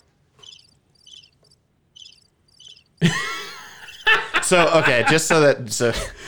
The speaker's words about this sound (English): Oh, there it is. There's crickets. So you do have crickets.